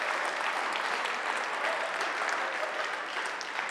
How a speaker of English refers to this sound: Can I just get everybody to clap on that right now so you don't put yourself out there?